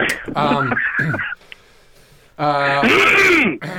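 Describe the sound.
Two loud, drawn-out throat-clearing bursts, each about a second long, rough and voiced with a gravelly groaning tone, separated by a brief quiet pause.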